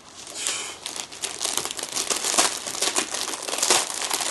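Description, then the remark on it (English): A cardboard package being torn open by hand without scissors: a steady run of crackling rips and crinkling bursts of paper and cardboard, with no one speaking. “Open your true friend package. Okay. Would you like some scissors? I'm a man, I don't need scissors.”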